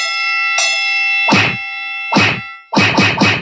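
Sharp, loud slaps ring out over a sustained bell-like tone: a single smack, another after a pause, then three quick ones in a row. No one speaks.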